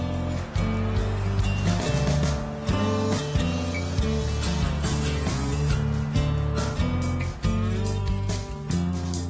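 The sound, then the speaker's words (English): A loud Dragonfly airboat engine roars steadily on a river, its pitch stepping up and down every second or so as the throttle shifts, with water noise beneath and no voices. “I really love this dragonfly airboat.”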